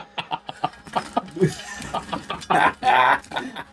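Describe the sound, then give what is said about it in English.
A chicken clucks in a quick series of short bursts, then lets out two louder, drawn-out squawks, with some voices mixed in. “He's just, chicken flying.”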